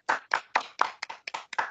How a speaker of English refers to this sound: Everybody clap right now. We're never gonna hear this again. Everybody.